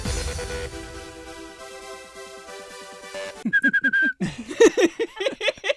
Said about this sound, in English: There's like levels to your whistling.